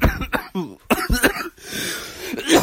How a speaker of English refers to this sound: I'm really, really sick. That was not a cough for show. That was me genuinely stopping breathing for about 3 seconds.